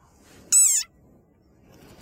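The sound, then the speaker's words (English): A very angry desert rain frog lets out its war cry, a single shrill, wavering squeak lasting about a third of a second, loud, like a squeezed dog toy, followed by quiet and the start of another squeak. “Like this desert rain frog. Squeaking viral sensation.”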